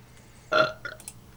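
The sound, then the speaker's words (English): A single short burp, fairly loud and throaty with a buzzing, tonal quality, trailing off into a couple of faint little follow-up sounds. No one speaks. “That's controlled flatulence.”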